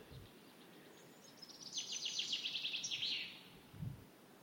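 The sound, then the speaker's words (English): A male chaffinch sings a single song phrase in an English woodland in early spring: a quick descending run of bright repeated notes ending in a flourish, against quiet woodland ambience, with a soft low thump near the end. “There's that male chaffinch again.”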